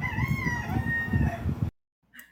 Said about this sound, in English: Whoa. I pushed the button again. I love the rooster.